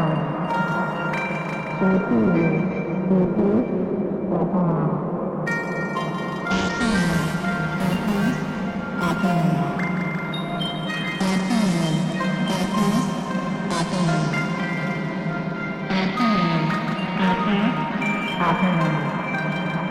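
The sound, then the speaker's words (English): An ambient synth patch with a tape-loop feel plays steadily under a regular clock: layered, shimmering tones with notes retriggering at an even pulse, full and continuous with no voices. “Let's take out the kitty eyes clock and see what a regular clock sounds like with this patch.”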